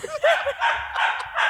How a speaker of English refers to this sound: She's just barking in Duke's face. I don't know why. He doesn't do anything.